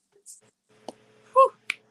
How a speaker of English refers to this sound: Snaps, claps. Yeah, triple P. All of that. I love that piece.